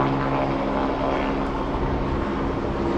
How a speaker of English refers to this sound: We got helicopters flying around here. Got helicopters flying all around here. I don't know what the deal is, but we are investigating it, okay? We are investigating it. See what this is all about. Here's another helicopter up there.